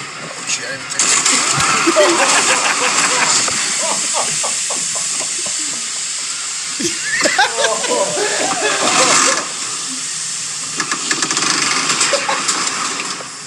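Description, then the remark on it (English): A car ploughs through deep flood water outside MetLife Stadium, a continuous roar of churning, splashing spray over a straining engine, with rhythmic surges and indistinct voices underneath. “Still give it a gas. Forge in the river here.”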